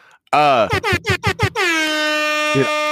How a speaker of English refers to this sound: See, I'm envious now that you have an air horn. I don't have an air horn.